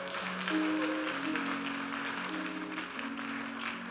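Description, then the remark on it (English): An audience claps for the Lord in a dense, steady wash of applause lasting the whole moment, while sustained organ-like chords hold underneath. No one speaks. “If you want to clap, clap for the Lord.”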